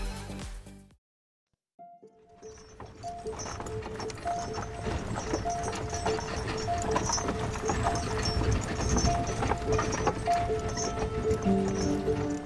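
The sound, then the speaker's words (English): Horse hooves clip-clop steadily on a hard road as a horse-drawn carriage rolls along, with rattling wheels and creaking underneath, fairly loud after a brief silence at the start. The carriage carries young Wolfgang Amadeus Mozart and his father Leopold 200 miles from Salzburg to Vienna in 1762. “Sometime in 1762, 6-year-old Wolfgang Amadeus Mozart sat in the back of a horse-drawn carriage with his father, Leopold.”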